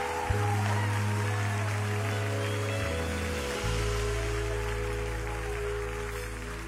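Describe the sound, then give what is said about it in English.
An audience gives God a clap offering, a steady, dense wash of applause lasting several seconds, with sustained low keyboard or organ chords droning underneath and shifting pitch partway through. “And now give him the best clap offering you've given him all day.”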